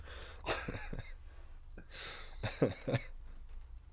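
A person coughs in a series of harsh, breathy bursts, several spaced across a few seconds with gasping breaths between, ending in a couple of rougher, voiced coughs.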